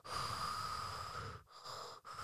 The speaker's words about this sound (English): Does anyone hear Joey Diaz, like, breathing really heavy there? Do a lot of fat people just breathe really heavy all the time? Like, you just, I just hear in the background.